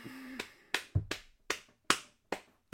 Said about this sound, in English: I'm clapping myself with rage.